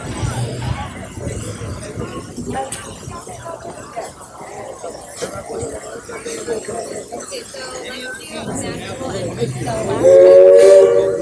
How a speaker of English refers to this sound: And here comes the train.